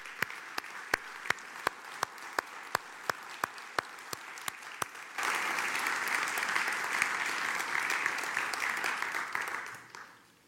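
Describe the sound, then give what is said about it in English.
A crowd breaks into applause for the veterans standing among them: a steady rhythmic clap at first, then swelling into dense, sustained clapping from many people before fading out near the end. “I wonder if you would sit down, but those who are veterans, if you would stand up, because we'd like to applaud you.”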